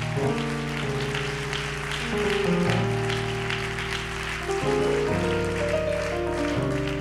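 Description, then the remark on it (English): A church audience claps steadily for the Lord, a dense, continuous patter of many hands, while sustained organ or keyboard chords play underneath and shift pitch a few times. “Somebody clap your hands one more time unto the Lord in the house.”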